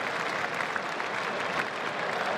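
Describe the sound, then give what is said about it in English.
Steady applause from a large cricket crowd acknowledging a batting milestone as Brook hits a boundary to reach 18, with the team at 3 for 152. A dense wash of clapping holds evenly throughout without any voices standing out. “Another little milestone checked off, and the crowd acknowledge it accordingly.”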